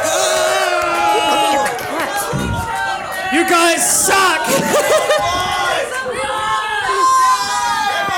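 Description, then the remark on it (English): A loud live audience roars and shouts continuously to imitate an arena crowd, many voices overlapping in a dense, rowdy din, with individual yells and jeers breaking through. “Yeah, give us some roar of the crowd. We have a crowd.”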